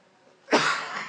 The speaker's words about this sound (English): Man, I wish I could stop coughing.